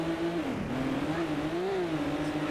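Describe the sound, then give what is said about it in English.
A video game race car engine revs steadily, its pitch dipping and climbing again across a couple of seconds, loud, with a buzzy, synthetic drone and no talking. “Well, each time we restart, though, the car is better, right?”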